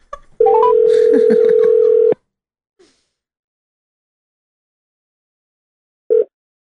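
telephone call ringing

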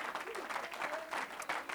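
audience hand clapping

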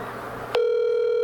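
outgoing phone call ringing

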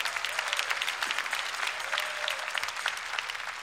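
audience clapping hands

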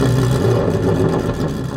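race car engine revving

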